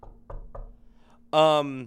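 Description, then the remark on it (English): Three quick knocks on wood, evenly spaced, followed by a short burst of someone's voice. “You better knock on wood.”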